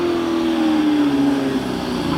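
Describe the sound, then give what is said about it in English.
A Hillman Imp race car engine roars loudly, a steady buzzing drone whose pitch slowly sinks across the two seconds as the revs ease off, with no voices. “Is this Hillman Imp?”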